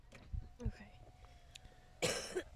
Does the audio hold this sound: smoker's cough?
yes